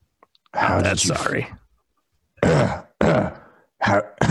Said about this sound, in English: Are you all right? You're coughing a lot.